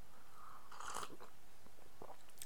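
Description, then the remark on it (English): A brief slurping sip of tea that has cooled down, followed by a few soft mouth and swallowing noises, with no talking. “let me just, I'm going to have a sip of this tea.”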